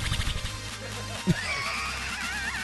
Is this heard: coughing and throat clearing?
no